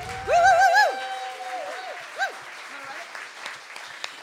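An audience claps steadily throughout, with a loud wavering whoop or cheer rising above the applause at the start before the clapping continues on its own.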